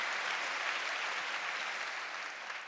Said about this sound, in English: You can clap. Mm. Your clapping is granted.